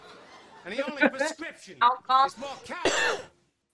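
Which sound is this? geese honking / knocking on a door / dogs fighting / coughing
coughing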